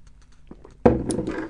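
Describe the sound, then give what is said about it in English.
A noisy slurp of hot tea being sipped, starting suddenly after a few faint quiet clicks and lasting about half a second, with no talking. “This is from the, hold on, sip of tea. Sip of tea.”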